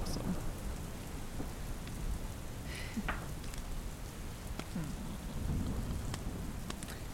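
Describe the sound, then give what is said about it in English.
Heavy rain pours down steadily in a dense, hissing wash, with deep rumbles of thunder rolling underneath and a few sharper cracks standing out. No one speaks. “You hear thunder more violently. You hear the rain. It's coming down heavy.”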